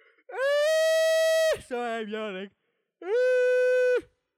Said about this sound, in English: Sorry, I had a yawn there.